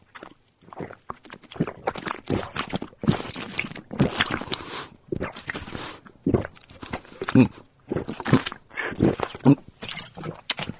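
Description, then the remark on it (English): Someone drinks water, with a run of wet gulps and swallows coming in irregular bursts, separated by short pauses and small mouth noises. “Drink some water, you'll be fine, hopefully.”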